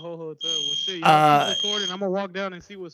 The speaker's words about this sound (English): Like you have next to exit the hotel, or is that the one where it's like your actual smoke alarm? I thought it was in my room. I was like, I didn't even hit the pin. Or is that? I mean, it's not in the room. You should probably leave.